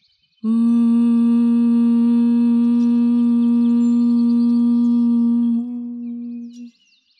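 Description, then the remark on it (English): A single long, steady hum on one low pitch lasts about six seconds, rich and buzzing, then softens briefly before stopping. It is a voice humming on an exhale, like bee breath, with no talking. “Exhale, humming.”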